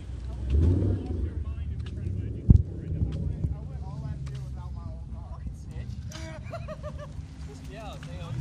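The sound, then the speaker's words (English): A race car engine turns over with a sudden sharp burst, then settles into a steady low rumble, with outdoor wind noise and people talking. “Fire it up, man. Fire it up.”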